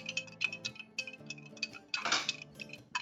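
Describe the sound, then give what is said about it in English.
A spoon stirs a hot toddy briskly in a glass, making quick, irregular metallic clinks and taps against the sides, fairly loud, with no talking. “You just give that a swirl. Give that a mix.”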